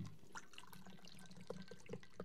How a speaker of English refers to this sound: And this particular type of apple juice is not really supposed to be shaking because it's sparkling. Anyways, let's pour us up our apple mocktail martini.